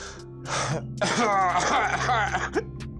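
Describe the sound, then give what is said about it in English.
Raspy coughing and throat-clearing from a man: a short rough burst followed by a longer, wheezy hacking spell, with a steady low hum underneath. “Oh, he's coughing, man. He's coughing.”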